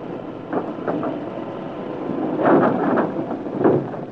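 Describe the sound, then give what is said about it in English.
A heavy sliding wall grinds open with a continuous low rumble, swelling into louder scraping surges partway through and again near the end, sliding back to reveal a ramp going down. No voices are heard. “When we get the wall to slide back?”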